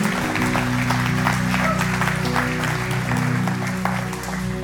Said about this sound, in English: And I'm so excited for you today. Will you give them a round of applause, those who raised their hand?